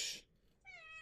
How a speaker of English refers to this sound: I don't know why my cat is screaming at us.